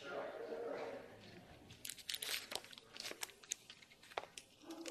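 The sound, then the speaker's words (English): Crisp crinkling and crackling of a $100 paper bill being crumpled and torn, a dense run of sharp rustles and snaps that follows a brief stretch of indistinct voice at the start. “Even though it's been crumpled up, stomped on, torn, I could blow my nose in it, I could do whatever”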